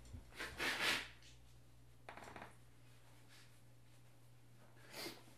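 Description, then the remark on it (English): A man sneezes loudly and breathily, then blows his nose in shorter snorting blows and gives a final sharp exhale, each separated by quiet pauses over a low steady hum. “Have you ever heard a podcast where the guy sneezes and then blows his nose and then doesn't bother to edit it out?”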